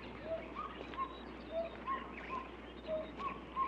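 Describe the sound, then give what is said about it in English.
A gecko calls in a series of short, hoot-like notes repeating at a steady rhythm, fairly faint against a hissing night-time background. “That was the gecko. That was the sound the gecko makes.”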